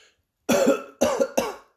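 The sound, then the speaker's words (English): Three harsh coughs in quick succession, each bursting out abruptly and trailing off, fairly loud with no talking around them. “So coughing is not a thing for you.”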